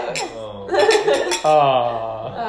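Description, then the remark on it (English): A few bright clinks of wine glasses tapping together in a toast at dinner, mixed with cheerful overlapping voices and a bit of laughter. “Y tenemos... Mucho vino. Mucho vino! Cheers! Mucho vino!”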